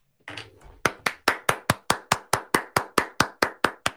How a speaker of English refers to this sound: That's hand claps. Connor Bedard. Get your own keyboard and you can hand clap.